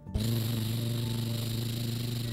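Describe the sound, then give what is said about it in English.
The engine of a very big digger tractor kicks in abruptly and runs at a steady, loud idle: a deep, humming drone with a rough, rattling edge that holds constant throughout, with no voices. “The loud engine in this tractor was very noisy.”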